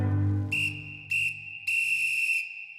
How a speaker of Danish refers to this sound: Så, nu har dommerens fløjte lyt, og spilleren skal ned i omklædningsrummet.